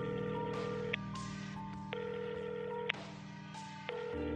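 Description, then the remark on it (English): A phone call being placed to someone who had not replied: steady electronic tones that change pitch roughly once a second, each change marked by a faint click, clear, with no one talking. “I checked my phone. No reply. I called him.”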